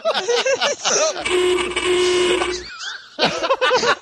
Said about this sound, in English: That's probably what the horn did sound like, actually